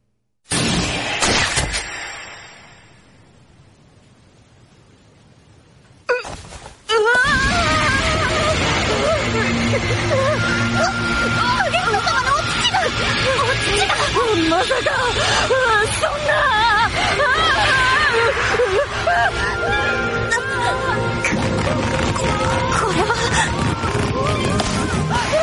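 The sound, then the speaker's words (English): A balloon-inflating sound effect: a soft, steady rush of air, then a burst and a loud, busy stretch of squeaky, wavering rubber squeals over a dense wash of noise and chatter. “Do you hear the balloon?”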